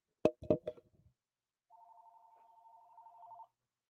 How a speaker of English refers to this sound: All right, I'm going to play this because the house phone's ringing.